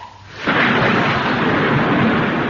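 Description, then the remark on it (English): A sudden, loud thunderclap bursts in after a brief quiet moment as a storm breaks, followed by a sustained, roaring rumble of storm noise that stays heavy to the end. “At that moment, the storm burst.”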